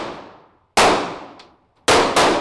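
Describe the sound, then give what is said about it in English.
Four loud, sharp gunshots crack out at a firearms training center south of downtown Los Angeles, California, in an uneven rhythm, the last two in quick succession, each trailing off in a ringing, echoing decay. No one speaks. “And just a note of warning, you're going to hear the sounds of gunfire in this story, like now.”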